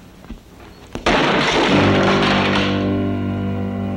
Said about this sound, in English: He kicks some of his tools across the floor